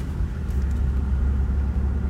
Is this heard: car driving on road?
yes